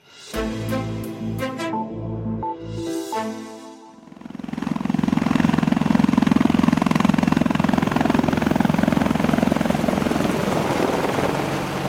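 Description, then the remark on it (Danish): A Eurocopter helicopter in flight: a high turbine whine with stuttering pulses for a few seconds, then a loud, sustained roar of rotor and engine noise that holds steady to the end, with no talking. “Jeg kunne altså ikke dy mig for lige at tage Eurocopteren igen.”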